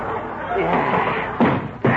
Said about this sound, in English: I'm kicking that cedar chair.